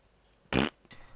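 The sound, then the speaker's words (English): A single loud, buzzy fart noise from the farting Old Granny character in the game Ass Attorney bursts out for a fraction of a second, then trails into a fainter, breathy rasp. No one speaks. “And then she farts.”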